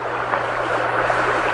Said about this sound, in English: We are all kneeling here by a brook. You can probably hear it, I think, even with this tiny tape recorder microphone that runs down from the chutes on the lake above.